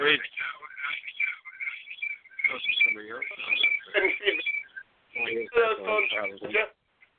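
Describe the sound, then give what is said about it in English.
Thin, tinny phone-line voices overlap and repeat, with a doubled echo from two phones on the same call smearing the speech into a garbled, warbling jumble for several seconds before a brief pause and another burst. “Sorry, I think we're at two phones echoing.”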